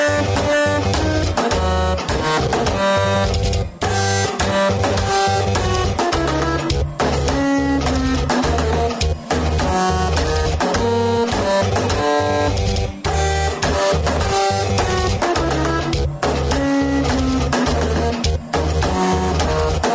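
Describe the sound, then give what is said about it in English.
A toaster, two electric toothbrushes and a typewriter, matched up by a man in his apartment during quarantine, buzz and clatter out a steady Star Wars tune: droning motor pitches shift between notes over rapid rhythmic clicking, loud and continuous with no voices. “Okay, so that was literally the sound of toaster, two electric toothbrushes, and a typewriter doing that.”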